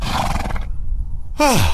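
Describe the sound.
A horse whinnies loudly, a rough breathy burst followed after a pause by a sharp, shrill neigh that slides downward in pitch. No one speaks.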